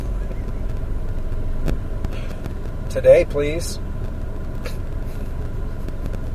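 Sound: car driving in traffic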